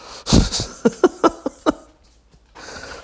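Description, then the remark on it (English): A dog, just swatted on the nose, lets out a loud, breathy sneeze, then a quick run of five short, sharp snorts in an uneven rhythm before a soft hiss trails off. “Now he's going to sneeze.”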